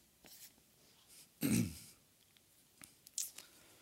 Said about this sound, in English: And all, excuse me, didn't mean for that to be so loud. Trying to clear my throat.